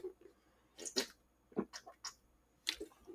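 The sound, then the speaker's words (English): Someone takes quick sips of water, a few short wet slurps and swallows spread over a couple of seconds, with no talking. “Needed a little water. I was parched.”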